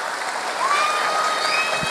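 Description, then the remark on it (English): A steady round of applause from many hands in tribute to actress Peggy Lipton, dense and continuous clapping at an even loudness for two seconds, with a thin whistle rising briefly above it. “Absolutely, give her a round of applause.”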